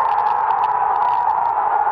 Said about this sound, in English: Here in the USA, thousands gathered at outdoor screenings for the historic soccer match taking place across the Atlantic Ocean when Italy beat England in the European Soccer Championship. This was the moment of victory at a street party in Manhattan.